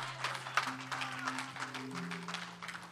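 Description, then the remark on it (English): An audience claps their hands together in praise of the Lord in a dense, sustained burst of applause, with a low steady organ-like tone holding underneath throughout. “Give the Lord another hand clap of praise today.”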